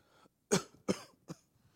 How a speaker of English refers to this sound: And it progresses to maybe a little cough.